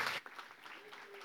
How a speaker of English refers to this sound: So let's give him a round of applause as he comes and shares with us.